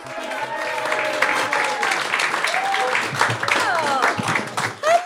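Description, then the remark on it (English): A live audience at the Museum of Comedy applauds steadily for several seconds, a dense wash of clapping mixed with cheers and whoops from the crowd, loud throughout. “You're very good keeping the applause going until we got here.”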